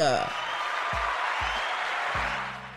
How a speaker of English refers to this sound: So someone decided to sit everybody down that was clapping. I mean, we could have had a longer applause this time, but I mean, it's cool. No worries.